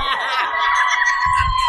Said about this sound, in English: For all the women that prefer a little more neat. I want to hear y'all scream.